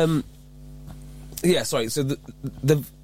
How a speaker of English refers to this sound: I think it's my laptop. Oh, yeah, cool. I was worried that was coming out of the headphones and we're getting a static noise.